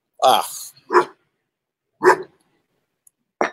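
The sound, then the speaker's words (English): A male dog barks four times at uneven intervals, each bark loud and sharp, with brief silences in between and no other sounds. “See, I want to turn around and see what he's barking at, but I can't because then you'll see my ponytail and then you'll make fun of my ponytail again.”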